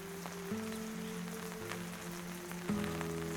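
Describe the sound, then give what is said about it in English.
Steady rain hisses and patters with scattered drops, over a low sustained droning tone that shifts pitch a few times. No voices. “"He spoke of you often," the bullet catcher says, beyond the sound of rain, his voice almost apologetic.”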